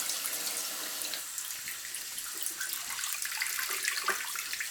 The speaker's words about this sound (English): And, of course, with a water stop, I fill it up 2 or 3 times, do a quick little swish around, and then dump it.